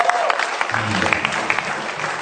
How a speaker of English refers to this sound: Come on, give God a hand of praise.